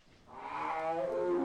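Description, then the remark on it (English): A Sumatran tiger's low, rising vocal call swells steadily in loudness over a second and a half, harmonic and throaty, alone with no talking. “The Sumatran tiger calls.”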